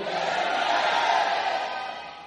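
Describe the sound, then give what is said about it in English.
An audience shouts amen together, a loud, sustained roar of many voices blending into one drawn-out cry that holds steady for about two seconds before tapering slightly. “Shout amen. Let me hear you.”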